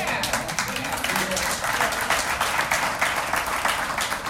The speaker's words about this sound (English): Oh, people can clap.